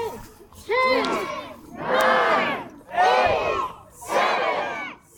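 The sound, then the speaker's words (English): A small crowd gathered in Elks Park, Telluride, for the lighting of the Telluride Ski Tree, in darkness and drifting snow, cheers and shouts together in four loud, swelling bursts, each a second or so long and separated by brief pauses, the many voices blending into a bright, ringing roar. “In Elks Park, a small crowd takes a rest from shopping and gathers to see the lighting of Telluride Ski Tree.”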